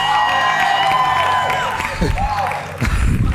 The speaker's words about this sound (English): I thought you'd be quiet, but you're all shouting.